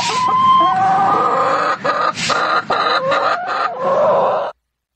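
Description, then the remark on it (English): A chicken clucks and squawks almost continuously for about four and a half seconds, loud, in a busy stream of short calls with a few brief pauses, then stops. “I would go for the first clip, that was a happy chicken.”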